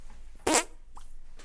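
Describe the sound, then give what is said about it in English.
A single short, raspy hand fart blurts out loud, lasting a fraction of a second before quiet returns, with a couple of faint small clicks afterward. “Time traveler, painter extraordinaire, and hand fart virtuoso.”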